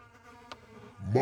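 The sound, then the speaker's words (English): Flies buzzing and eating on dog feces in a steady, droning hum with a layered, reedy tone, growing louder and rougher toward the end; a brief tick sounds partway through. “The buzzing is made from the flies.”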